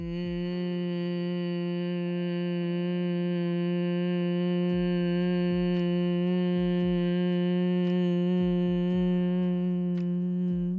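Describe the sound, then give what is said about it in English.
A long, steady humming exhale through the nose with lips sealed and tongue against the palate during a breathing exercise, low-pitched and unwavering, fairly loud for about eleven seconds with no talking. “Exhale through the nose, make that humming sound.”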